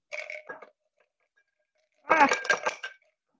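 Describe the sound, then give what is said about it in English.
Liquid poured into a glass over ice while making a cocktail, in two short splashy bursts with ringing clinks and a pause between them. “Try not to splash too much.”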